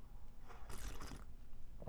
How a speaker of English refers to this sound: Tea sounds great. Let's all take a sip.